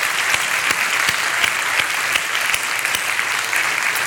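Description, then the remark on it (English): The Calvary Chapel South Bay audience claps steadily and warmly for the veterans present, a dense wash of applause without pause for several seconds, with scattered sharper claps standing out from the crowd. “And so, Calvary Chapel South Bay, would you mind please giving an applause to our veterans who are with us?”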